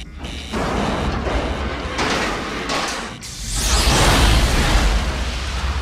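A loud, dramatic movie recreation of a spacecraft oxygen tank explosion as the crew stirs the tanks: a heavy jolt and bang followed by roaring, hissing rumble that swells and lingers for several seconds, with no voices.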